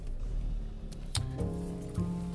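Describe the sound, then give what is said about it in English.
Low, steady rumble inside a car on the way to a recording session, with a few sharp mechanical clicks and a faint droning hum that rises partway through. Moderately loud, with no talking. “I'm doing a quick one here in the car on my way to track keys for one of my songs with a friend producer.”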